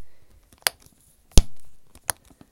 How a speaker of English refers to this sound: You hear that with the clicking in and out? So that's the slap bracelet thing, right? So it's in this rectangular casing. Not even a casing. There's, like, this plasticky bit surrounding the back of it.